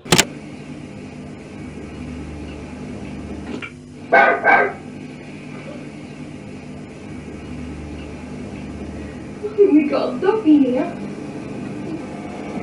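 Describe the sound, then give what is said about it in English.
A dog barks in two short spells, first a quick pair of sharp barks, then a busier flurry a few seconds later, over a steady low background hum. “We got a dog here.”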